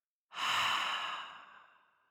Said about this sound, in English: And we're going to take a deep breath in, hold it at the top, and you're going to think of this thing, and then breathe out. So breathing in, holding the breath, holding that insight or wisdom or intention, and breathing out.